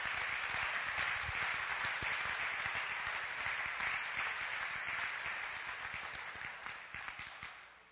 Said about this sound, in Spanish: Can we give a clap offering to the Lord?